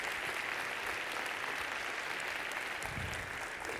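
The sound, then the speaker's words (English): Steady, sustained clapping from a crowd giving a round of applause to a choir, orchestra, band and singers, a dense wash of many hands applauding at an even level throughout with no voices standing out. “Give them a round of applause once again.”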